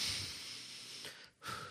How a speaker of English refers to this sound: So what you want to do is pick your mic up. Even if it's a headset mic, I always tell my co-host, get that sucker up about even with your nose, the tip of your nose. And that way all your breath goes down below. So you can still hear me breathing.